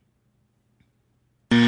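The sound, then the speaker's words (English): A loud, harsh game show buzzer suddenly blares during a tiebreaker round, after a stretch of near silence, its dense tone cutting in abruptly at the very end. “He's not buzzing in. I'm not going to buzz in either.”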